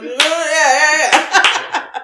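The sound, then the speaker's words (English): A drawn-out, high-pitched vocal cheer gives way to a short burst of scattered, uneven hand claps from a few people, sharp and fairly loud, fading out within a second. “y'all better clap for me.”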